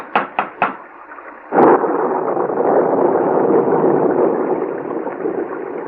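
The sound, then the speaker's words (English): Three quick knocks sound, then a sudden sharp crack gives way to a loud, steady roar of storm noise, like thunder and heavy rain, that holds to the end without any voices. “since the beginning of the storm when we lost our way”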